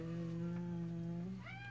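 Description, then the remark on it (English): A cat lets out one long, low, drawn-out meow that swings upward in pitch at the end, fairly loud, with no one talking. “And then we got the cat.”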